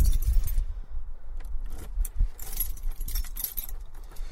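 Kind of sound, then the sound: household object, bunch of keys jangling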